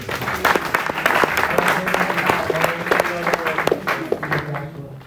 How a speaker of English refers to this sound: Amen. Let's give God a clap.